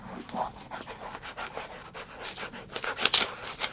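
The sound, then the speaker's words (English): A pen scratches and scrapes across a piece of paper in quick, irregular strokes as someone draws a chart, fairly quiet, with brief rustles between marks and no one speaking. “Let me draw you a chart. Okay. Let me just okay, I've got a pen. I've got a piece of paper.”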